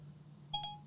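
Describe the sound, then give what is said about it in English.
A short, bright electronic chime from a phone, a quick two-tone Siri voice assistant activation beep after "Hey Siri", ringing out briefly over a low steady background hum, with no talking. “How are you going to talk over me with talking to your phone?”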